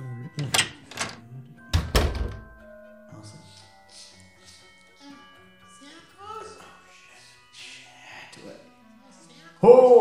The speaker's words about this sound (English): He snuck back down the roof and through the back door. Got a key right here. Put it in real quick.